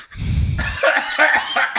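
A loud coughing fit: a heavy, rough first cough followed by several rapid, raspy hacks in quick succession, with no talking.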